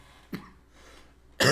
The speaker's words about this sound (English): Don't get choked up now. I can't help it. Sorry for the cough.